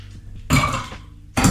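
Ice clatters and clinks as a cocktail is mixed, in two loud bursts of rattling, a longer one followed by a short pause and another burst. No one speaks.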